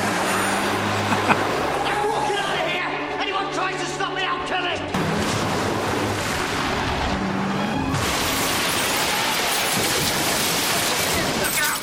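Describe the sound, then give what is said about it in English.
A car is driven into the front of a building in a ram raid: its engine roars amid a chaotic, continuous rumble of crashing and grinding noise, loud and dense throughout, with indistinct voices mixed in. “Or do you drive your car into the front of a building?”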